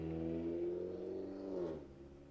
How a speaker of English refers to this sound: Is there a motorcycle in the background? I live on a main street, so that might have been from me.